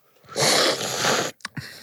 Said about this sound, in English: So I'm doing the same process. I'm slurping like bad soup.